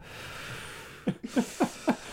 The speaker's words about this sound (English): The man you hear breathing on the microphone right now